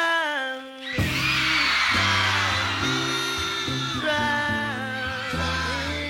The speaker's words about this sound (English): Just listen to how the crowd reacts at his performance at the Apollo Theater.